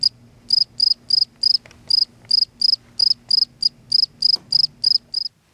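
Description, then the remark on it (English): A cricket chirps in a steady, even rhythm, about fourteen shrill high-pitched pulses over a few seconds, clear above a faint low hum, with no one talking. “It may as well be crickets because the budget is all spin and no substance.”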